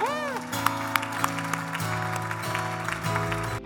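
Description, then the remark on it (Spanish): An audience at a Spanish-English church service applauds steadily in praise to God, a dense wash of clapping mixed with sustained keyboard or organ chords that shift pitch, with a few sharper claps standing out. “Si Dios te habló, aplauda.”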